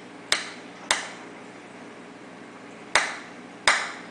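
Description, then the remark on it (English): A mantis shrimp punching its prey: four sharp, loud cracks in two pairs, each snapping out and quickly fading, over a steady background hiss. “So we're going to give you the sound that a mantis shrimp makes when it punches something to death.”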